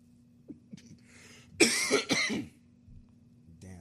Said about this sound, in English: I wish I had a cough button.